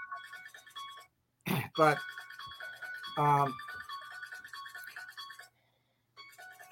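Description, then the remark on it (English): A mobile phone plays a looping electronic ringtone melody, steady, stopping briefly twice. Short bursts of a voice cut in over it. “let me shut this phone off here.”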